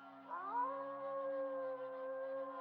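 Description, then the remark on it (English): Wolves howling at night, several long voices overlapping; one rises in pitch and then holds a steady, drawn-out note. The chorus sounds fairly quiet and continues unbroken, with no talking. “You hear them, Mr. Harker? The wolves. The children of the night.”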